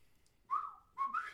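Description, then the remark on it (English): A robot ship pilot chortles and beeps: two short, bright warbling chirps with sliding pitch, the second rising in a quick trill, with no talking around them. “He kind of gives a few chortles and beeps.”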